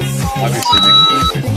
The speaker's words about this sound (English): It does the coin noise when you hit it, but it's lighted and it's battery driven.